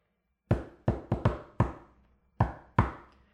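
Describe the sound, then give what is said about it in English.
A rhythmic door knock pattern: seven sharp raps in an uneven syncopated rhythm, a quick cluster of knocks, a short pause, then two final knocks. No talking. “Do you want to hear my knock?”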